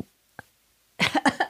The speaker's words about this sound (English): I keep coughing.